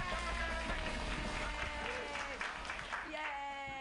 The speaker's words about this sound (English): Everybody clap.